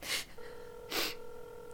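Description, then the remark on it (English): A steady electronic tone hums over a phone line, like a ringing tone heard through the receiver, with two sharp breathy gasps or rushes of air on top of it. “It's ringing. Take it.”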